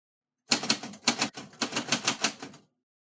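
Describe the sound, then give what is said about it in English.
Rapid clattering keystrokes on a formal typewriter, a steady burst of clicks lasting about two seconds with brief pauses between runs, fairly loud, with no voices. “What are you typing?”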